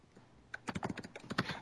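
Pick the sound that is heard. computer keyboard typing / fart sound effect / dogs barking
computer keyboard typing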